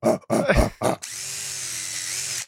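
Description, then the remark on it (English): A voice imitates a "more power" grunt: three short, rough grunts in quick succession, then a steady, buzzing whine like a power tool holds for about a second and a half. “And then two, can you say more power and grunt for me, please?”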